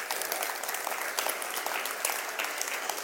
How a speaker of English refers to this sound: This would be a good time for the rest of you to applaud the work of God through someone who's been called like coach in this place.